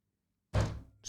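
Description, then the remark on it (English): A single loud, heavy thud as a hand slams down on a table, breaking sudden silence and ringing out briefly before a second impact begins right at the end. “Slams a table.”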